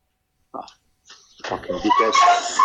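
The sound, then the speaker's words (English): A dog makes a short yelp, then after a pause gives louder, sustained whining and barking noises at the door, mixed with people talking. “He just wanted to get you up. I appreciate that, the dog.”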